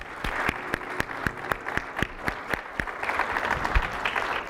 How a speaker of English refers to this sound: So a round of applause for Vera.